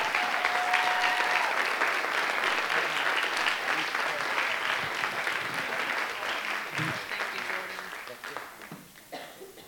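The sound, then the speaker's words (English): Sustained applause from a standing audience welcoming a speaker at Christmas time, a dense wash of clapping that holds steady for several seconds, then gradually thins and fades toward the end, with a few scattered claps and murmurs. “So anyways, without further ado, close family, with honor, let's welcome them with honor, stand, applaud,”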